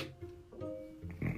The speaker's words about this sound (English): Excuse me. Oh, that burp was delicious. That makes you, that lets you, when you got a good burp like that, it lets you know the dinner was good. But then again, that wasn't a good burp, so I might need to go back for seconds.